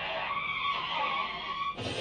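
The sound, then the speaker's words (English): A loud, sustained squeal of car tires skidding on pavement for nearly two seconds, cut off abruptly by a harsher, broader burst of noise as if the car strikes something. “Until the car accident happens.”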